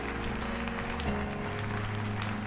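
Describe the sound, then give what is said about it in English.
A crowd claps steadily and continuously for a couple of seconds, a dense, even patter of many hands, with low sustained musical tones humming underneath. “Y'all feel like clapping a little more? There we go.”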